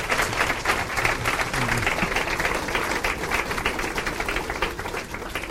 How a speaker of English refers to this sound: I sincerely hope you are not applauding me. You are applauding the side of your conscience who was moved to go to action.